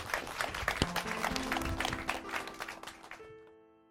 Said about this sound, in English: For everyone, yes, big round of applause.